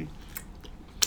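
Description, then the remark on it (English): Quiet mouth noises from someone sipping a drink: a few short wet slurps and swallows, with one sharper smack near the end, and no talking. “I'm gonna take one more sip.”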